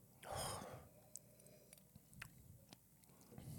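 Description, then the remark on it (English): A brief airy slurp of a sip of Knob Creek whiskey, followed by a bite of food and a series of soft, irregular chewing clicks and crunches, with no talking. “All right, first we'll do a sip and then a bite.”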